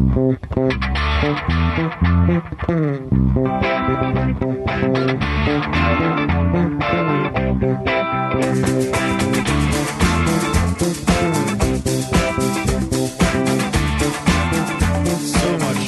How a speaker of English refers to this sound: Can we get this bit? Sounds cool. This bass line.